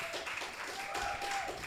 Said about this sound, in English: Your audience is clapping for it if you couldn't hear that